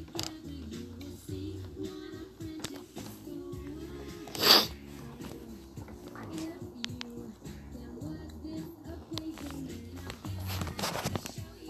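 A single loud, sharp sneeze bursts out near the middle, standing clearly above a steady bed of low background music that plays throughout.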